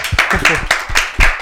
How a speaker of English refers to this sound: Yo, guys, when I clap, you guys clap.